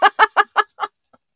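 A duck in a bathtub quacks five times in a quick, even rhythm, the calls loud at first, then growing softer, with a faint final peep and no talking.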